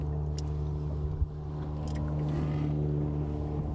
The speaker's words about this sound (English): That boat has come down all the way from Inchigill now.